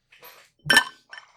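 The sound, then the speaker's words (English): Whiskey being poured into a glass: a brief splashy trickle, then a sharp glassy clink of bottle against glass and a softer rattle, with no one speaking. “So let's all pour ourselves a glass and give it a shot.”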